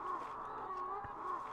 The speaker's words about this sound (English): If you perk up your ears, you can hear chickens clucking in the distance.